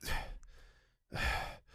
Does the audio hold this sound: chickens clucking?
no